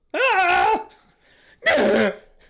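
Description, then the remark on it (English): A person imitates a whale call for the Whalers team with two loud vocal bursts: first a wavering, pitched moan lasting over half a second, then after a pause a rougher, breathier cry. “What the fuck was that? That's a whale, dog.”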